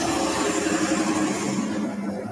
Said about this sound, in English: All right, a car is driven by.